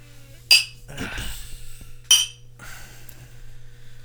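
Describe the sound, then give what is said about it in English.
Two bright clinks of beer glasses touching, about a second and a half apart, each ringing briefly, over a low steady hum and soft rustling. “Setup's good for recording, not so much for clinking.”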